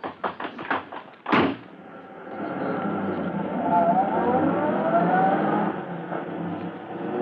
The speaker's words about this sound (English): The time is 12 minutes to 1 o'clock in the morning. The night is pitch black, and as Polecat and Scrubby in their fast car escape from the scene...